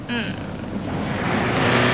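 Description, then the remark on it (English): A car engine hums and road noise rushes steadily as the car drives toward Devon, building slightly louder over two seconds, as if heard from inside a moving vehicle, with a brief whining tone at the start. “Darling, are you planning to drive all the way to Devon non-stop?”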